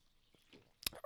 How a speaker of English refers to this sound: Oh, I just got to say, side note. Do not buy this damn vanilla bourbon. Oh, this is a vanilla cordial with a splash of bourbon. It's damn disgusting. As I take a sip.